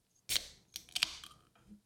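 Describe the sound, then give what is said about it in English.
A can of Sun Kiss drink is cracked open: a sharp metallic snap, then a few crisp clicks and a brief fizzing hiss, with no one talking. “I'm going to open this sun kiss.”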